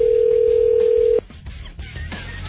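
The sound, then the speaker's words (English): A steady, loud telephone dial tone holds for about a second, then cuts off into quieter line noise with a few faint clicks as a number is dialed for a call on AM970 radio. “Let's see if I can get Susan on the phone for this.”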